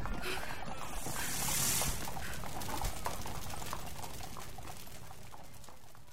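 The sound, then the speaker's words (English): The hooves of a horse-drawn dog cart, in Sherwood Sound Studios' audio drama adaptation of H.G. Wells' The War of the Worlds, clip-clop in a steady, even rhythm over a constant rumbling, hissy background, holding at a moderate level with no voices throughout. “I'll get the dog cart from the spotted dog.”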